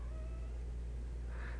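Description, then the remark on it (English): A cat gives a single short meow near the end, fairly soft, over a steady low background hum with no one talking. “And my cat likes it.”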